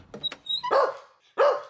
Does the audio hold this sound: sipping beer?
no